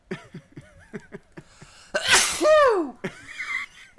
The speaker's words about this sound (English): sneezes like a girl.